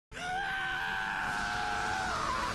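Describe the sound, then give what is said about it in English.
A single prolonged, strained male scream from the anime villain Dio, in the English version of JoJo, as he is impaled; it holds steady at full volume for over two seconds, loud, with a harsh gritty edge that trails off slightly at the end. “When he first is impaled, his scream is, in the English, is hilarious.”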